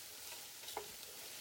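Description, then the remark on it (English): Onions sauté and sizzle steadily in a hot pan, a soft continuous hiss with one brief scrape of stirring midway, fairly quiet, with no voices. “And my onions are almost ready, so I don't have anything else to show you guys right now, so I'm going to put you on hold.”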